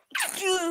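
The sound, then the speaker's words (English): A single sharp sneeze bursts out suddenly and trails into a short voiced, falling tail. No talking accompanies it. “Bless you.”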